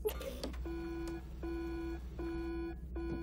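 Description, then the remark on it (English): A sample-testing machine alarm beeps insistently because of a hot sample, four long buzzy electronic tones in a steady repeating rhythm, loud over a low background hum. “My God, what's wrong with the machine? There's nothing wrong with the machine. It's a hot sample.”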